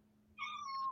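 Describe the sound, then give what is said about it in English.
A cat named Selkie lets out one short, high-pitched squeak, a thin, steady tone lasting about half a second over quiet background, ending with a soft bump. “Did you hear a little squeak?”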